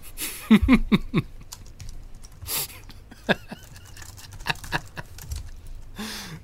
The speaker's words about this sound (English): I'm going to get some of this typing.